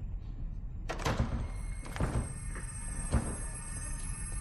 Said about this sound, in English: you broke the door.